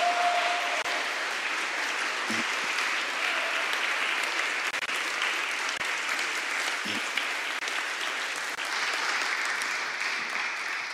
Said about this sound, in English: Would you give them a round of applause as they come?